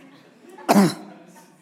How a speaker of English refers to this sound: Crying and coughing at the same time, that's a weird thing to do. Started to tear up and then I went.